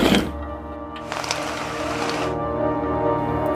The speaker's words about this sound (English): Folks, I don't know what just happened, but it seems that there was some kind of explosion in town, and I can see a fire near City Hall.